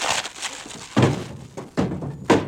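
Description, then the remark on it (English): A girdle breaking in a phone booth, heard as a burst of clattering followed by three heavy, dull thunks, each loud and abrupt with a brief rumbling tail. No one speaks. “The phone booth. My girdle broke.”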